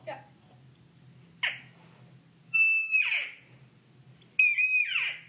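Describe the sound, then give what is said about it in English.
A child's voice imitates a cat, making three meows: a short one, then two long, drawn-out, wavering meows, loud over a low background hum. “Yeah, and see, you have to get that where you the one you made that meow, that you do that every single time.”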